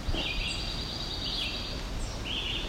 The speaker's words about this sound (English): Okay, that really high-pitched one is what I'm thinking might be Cape May warbler. That right there.